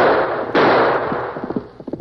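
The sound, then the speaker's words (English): Two sharp revolver gunshots, about half a second apart, each bursting loudly and trailing off into a long, rumbling echo; Big Jack's gunfire from horseback along a trail, aimed at the Lone Ranger. “He must be out of ammunition. He didn't return my gunfire.”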